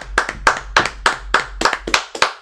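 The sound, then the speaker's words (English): Steady, rhythmic hand clapping in applause for the film Black Panther, about ten sharp claps in quick succession, fairly loud, with no voices over it. “Clap it up for Black Panther.”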